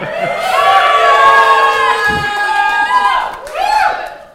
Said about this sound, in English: Biggest cheer, well done.